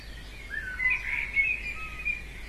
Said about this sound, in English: Listen to the birds calling to each other, the movement of the wind in between the leaves.